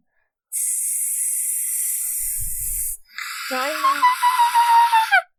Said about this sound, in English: you make it to the Death's Head tree, and its branches whistle in the wind, and every one of the little faces on it turn towards you.